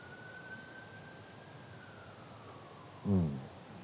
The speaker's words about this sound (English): And as we hear that siren pass outside, I think about sometimes the urgency of moments that we share.